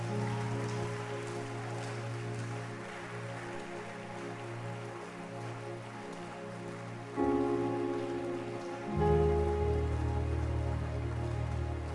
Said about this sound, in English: So can I have all the new converts, if you are here, please come to the front. I want to pray for you. You got born again this month. keep clapping for them.